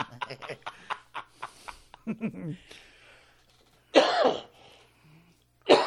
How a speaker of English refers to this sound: Fuck it. Jesus Christ. Coughing asshole.